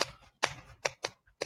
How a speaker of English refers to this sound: I hear a real typewriter.